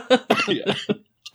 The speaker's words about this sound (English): Oh, dear. Sorry. That's all right. Spit it out. Might be a gold watch. I was trying to be funny and trying not to cough at the same time. Neither worked. Epic fail.